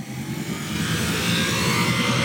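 A motorcycle engine runs loud at a racetrack, a steady, throaty drone with slight wavering in pitch as it revs, filling the whole stretch with no voices.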